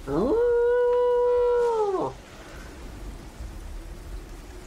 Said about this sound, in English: Moments after the volley of arrows hit the sky, there is a horn that calls out.